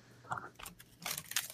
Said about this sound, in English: Okay, so she's going to take her first bite into the microphone so we can hear the crunch.